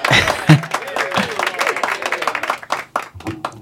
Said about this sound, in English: Can I get applause before I say hi? Yeah. All right. Let's do it again.